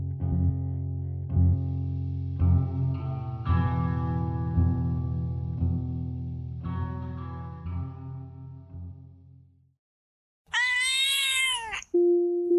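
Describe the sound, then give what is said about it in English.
A single loud cat meow rises and falls after a low, sustained musical drone fades into a brief silence; a short steady tone follows. “A black cat brings us a story about a man pursued by an evil entity.”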